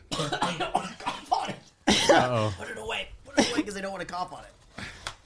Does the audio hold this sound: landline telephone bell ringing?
no